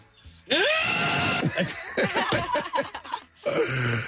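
Loud, overdriven yelling and shrieking from several voices, close and distorted, with laughter-like wails between bursts and a brief dropout before one last harsh shout.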